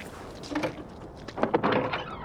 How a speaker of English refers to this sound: You see? It's open. Which is totally normal. A secret, unmarked base in the middle of nowhere in the dead of night, and the door's just totally open.